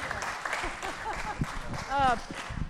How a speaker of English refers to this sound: Give him a big round of applause, okay?